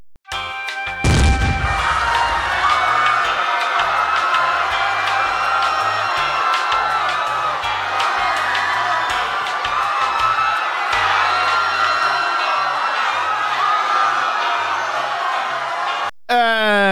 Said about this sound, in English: And maybe instead of the bomb break music, explosion. Have screaming infidels.